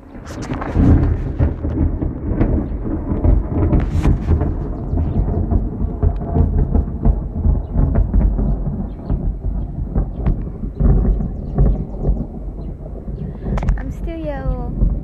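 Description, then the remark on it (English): A thunderstorm rumbles loudly and steadily with deep, rolling thunder and sharp crackles over a wash of rain, while voices murmur faintly underneath and a brief high chirp appears near the end. “Maybe I should go inside. No. If the rain starts to come, no.”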